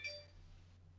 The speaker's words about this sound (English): Is that the wrong GM in the background as well? Yeah. No, that wasn't the GM. That was my wife's phone.